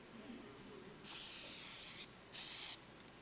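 An aerosol spray paint can hisses in two bursts, a long one of about a second followed by a shorter one, with a bright, steady high-pitched rush and quiet between.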